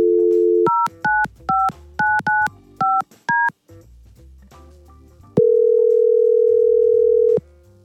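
A steady dial tone hums briefly, then a quick series of about seven touch-tone beeps in an uneven rhythm, followed by a longer sustained tone, all clear with no talking, as hosts at radio station Y100 place a phone call.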